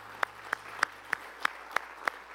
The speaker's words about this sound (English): Let's give the Lord a big hand today.